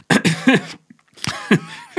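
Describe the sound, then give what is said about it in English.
Two loud bursts of coughing separated by a brief pause, each made of a few rough, harsh hacks with no talking around them. “I was just letting you cough.”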